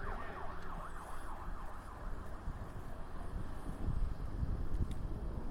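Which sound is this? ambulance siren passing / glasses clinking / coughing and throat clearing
ambulance siren passing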